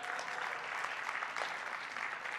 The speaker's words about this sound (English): Raise your hand if you're a baby boomer. Amen. Let's clap for our baby boomers.